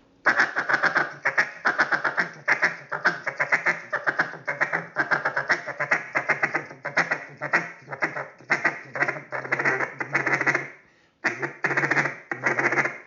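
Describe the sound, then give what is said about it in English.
A rapid, rolling feed chuckle blown on a duck call at incoming ducks, dense clucking notes running continuously for about ten seconds, a brief pause, then resuming, fairly loud with no talking. “You can hit him a little bit of that feed right there and just let them see what they're going to do.”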